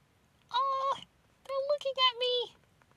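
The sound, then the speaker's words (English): A cat meows loudly and close by: one short, bright cry, then a longer, wavering meow broken into several pulses after a brief pause. “Hello, kitty!”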